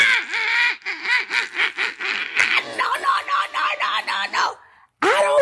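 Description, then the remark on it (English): A woman who has fallen onto the floor screams in pain as she is rolled over to be cleaned up: a rapid run of loud, high-pitched, strained cries in short rhythmic bursts, then a brief pause before one more wail. “If the baby is screaming because the floor and her hip”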